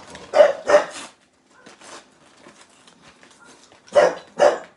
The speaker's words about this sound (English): This dog gets very, very loud when I start filming.